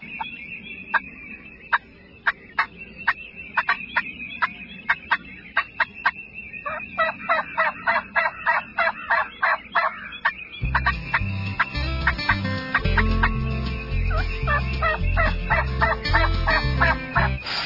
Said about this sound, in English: big time turkeys running to your call